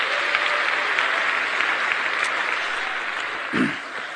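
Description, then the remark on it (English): An audience claps steadily, a dense, even wash of many hands sustained throughout, with a brief swell near the end and no voices standing out. “So I think you all deserve a round of applause for being such a great audience.”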